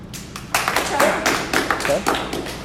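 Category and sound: crowd, clapping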